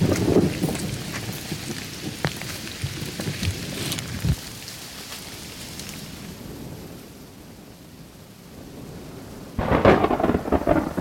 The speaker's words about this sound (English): That was the craziest bolt of lightning I've ever seen. That was like some power of God shit. Finally, the lightning strikes and thunderclaps feel like they're right on top of us.